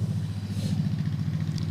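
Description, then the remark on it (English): A Harley-Davidson motorcycle engine rumbles steadily as it passes by, with a deep, throbbing low-end growl, moderately loud, holding a constant drone throughout with no voices. “There's a motorcycle. That's a Harley, brother.”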